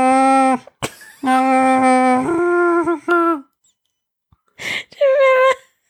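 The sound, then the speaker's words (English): A person imitates Chewbacca's howling Wookiee growl in a few loud, drawn-out vocal bursts that waver in pitch, broken by a brief pause before a final shorter cry. “I did like a little bit of a chewy, like a tiny, tiny bit of a chewy on the...”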